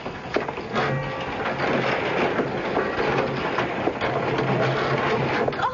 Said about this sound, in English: Let me open the old door.